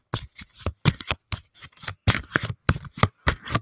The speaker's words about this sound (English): I'm going to do a few more shuffles here.